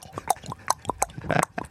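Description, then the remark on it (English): A person imitates a horse with their voice, making a quick, rhythmic run of short snorting, clopping bursts, fairly loud, with no other talking. “Look, there's a horse.”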